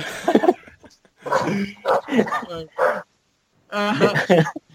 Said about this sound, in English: I think she's in heat. There's a dog going on in the street, and I think she's in heat. So. Oh, she's in heat.